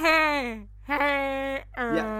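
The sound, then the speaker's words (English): A voice imitates a dying sheep with three drawn-out, wavering bleats, loud and nasal, the first sliding downward in pitch, each separated by a brief pause. “The sound of a dying sheep.”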